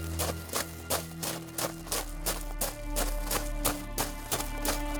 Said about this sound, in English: A scene created with sound effects might go like this. Wind and owl hoots. Hurried footsteps on dirt.